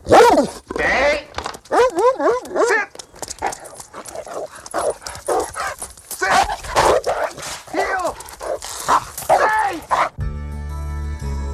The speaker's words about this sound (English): Back at Ferris's house, Rooney attempts to climb in through the doggy door, but is attacked by a ferocious guard dog.